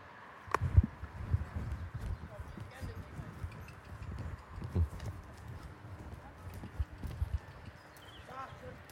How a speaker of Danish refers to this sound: Så får den lige et par klask, så den bevæger sig længere ind, den hest, der stod.